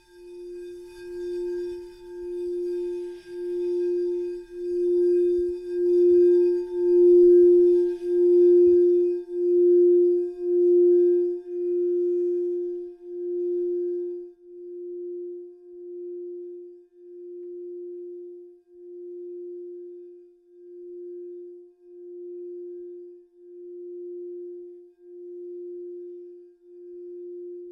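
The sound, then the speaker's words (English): A meditation singing bowl, recently bought at a store, rings out in a steady mid-pitched tone that pulses with a slow, regular wobble. Its bright overtones fade after the first several seconds, leaving a pure, sustained hum. No one speaks. “got extremely into meditation and have been wanting a bowl for a long time”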